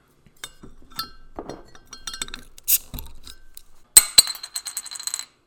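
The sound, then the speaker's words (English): A beer bottle is cracked open: scattered glassy clinks and handling rattles, a short hissy burst, then a sharp bright clink of the cap that rings briefly with a few quick follow-up taps. “Well, do you want to crack this one open?”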